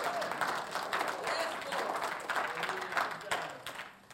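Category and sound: crowd, audience applause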